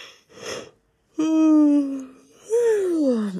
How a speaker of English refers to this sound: Hang on, I feel like I'm holding in such a big yawn. Can you indulge me?